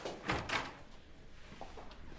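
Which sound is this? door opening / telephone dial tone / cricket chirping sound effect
door opening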